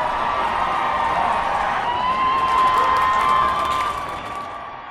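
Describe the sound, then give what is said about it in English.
A large crowd chants, cheers and applauds Lex Luthor continuously as he raises his arms after his speech, a dense wash of voices and clapping with occasional whoops rising above, sustained and fairly loud before easing slightly at the end. “Lex Luthor smiles his triumphant smile once again and raises his arms into the air before everyone who chant, cheer, and applaud Lex.”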